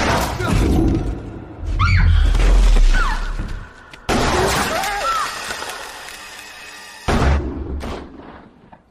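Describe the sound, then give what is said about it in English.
Several loud gunshots crack out a few seconds apart, each a sharp, booming blast followed by a long, rumbling tail that fades before the next shot. “So as you heard, a couple shots were fired”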